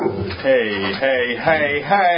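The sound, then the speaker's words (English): A big brown dog barks at another dog about four times in quick succession, roughly every half second, with loud, harmonic yelps that rise and fall in pitch and fill the whole short stretch. “That was the big brown mean dog barking at the retarded dog.”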